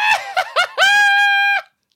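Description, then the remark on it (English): A man's voice imitates a shrill, childlike scream: three quick rising yelps followed by one long, sustained high-pitched shriek that cuts off abruptly, loud. “I screamed like a little child.”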